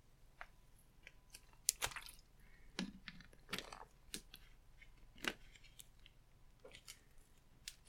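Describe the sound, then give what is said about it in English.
Someone sips water: a series of quiet, wet slurps, gulps and small mouth clicks spaced irregularly over several seconds, with no talking. “As I sip my water, guys.”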